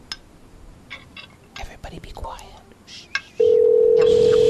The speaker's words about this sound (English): Ready? It's ringing.